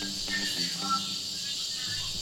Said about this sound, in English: That was crickets, right? Yeah, it's like cicada type sound.